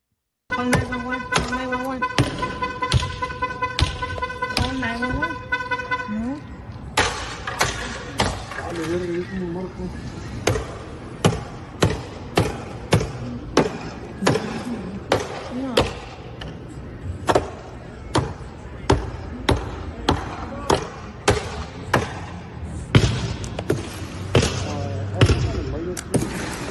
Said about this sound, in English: One guy broke a car.